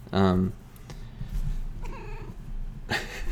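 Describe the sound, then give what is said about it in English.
A female pet cat meows loudly, starting with a long drawn-out cry, then a softer, wavering meow, and a final loud yowl at the end. “Echo wants to be on the podcast. My cat that I've had since I was a freshman in high school.”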